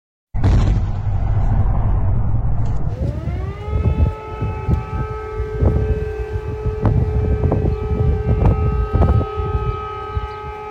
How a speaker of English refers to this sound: In scenes many considered to be from another age, air raid sirens blared, explosions rocked buildings, and civilians sheltered in subway stations.